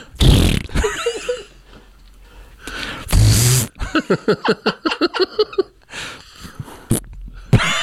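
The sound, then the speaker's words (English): A person imitates fart noises with their mouth while being recorded, fairly loud: a couple of short blasts followed by a rapid, rhythmic sputtering run of pulses, then a final quick burst. “All right, make your fart noise.”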